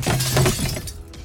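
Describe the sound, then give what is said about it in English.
In a club, someone flips a table over as a fight starts, and glass shatters in a loud, bright burst of breaking shards. It lasts about a second, then scattered tinkling fades quickly into near silence. “And that's, before he gets a chance to answer, almost as if reading your mind, someone at a nearby table flips it.”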